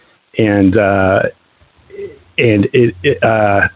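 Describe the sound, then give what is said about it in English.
A mobile phone rings with a bright, melodic ringtone: one sustained phrase, a short pause, then several quick bursts of tones, fairly loud with no talking over it. “I got to mute my phone here.”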